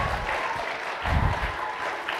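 An audience applauds steadily with dense, sustained clapping, swelling slightly midway through a couple of seconds.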